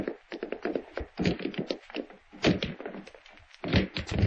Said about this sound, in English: Break the door down, Sheriff. I know something's happened to him.